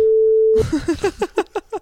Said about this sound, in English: You have to cut that. All right, what was that timestamp? I'll beep it.